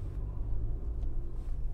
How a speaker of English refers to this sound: It's quite a bit of traffic as I'm trying to get out of the city and get into the freeway right now.